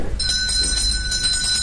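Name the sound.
doorbell ringing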